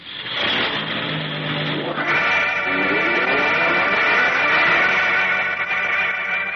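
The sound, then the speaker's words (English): A truck engine roars and revs up, its pitch climbing after a couple of seconds, then holds at a loud, steady drone as it pulls off. No voices are heard. “Throw him in that truck and gag him.”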